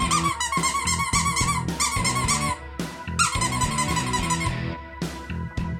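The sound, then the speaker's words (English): A dog named Deco growls steadily and loudly in rough, pulsing bursts while chewing on something, with a short gap near the middle before the growling resumes, no people talking. “Now you don't want to chew on it.”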